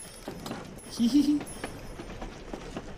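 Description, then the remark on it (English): A toy train sound effect from the video game Mini Trains: a short, low, buzzy toot lasting a fraction of a second, set over soft, irregular clicking and a faint, steady high-pitched whine. “The sounds on it are so nice, the train sounds, and that sound when you get the stars is really nice.”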